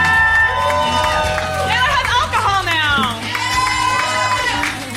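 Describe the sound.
An audience at an event in a basement cheers and claps steadily for about five seconds for the event's organizer, with high whoops and shouted voices rising and falling over a constant wash of applause.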